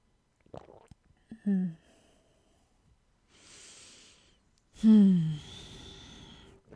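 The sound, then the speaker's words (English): A soft, airy slurp of someone sipping tea, then a louder voiced exhale that falls in pitch, with a few short breathy vocal sounds before the sip. “I'm gonna sip my tea.”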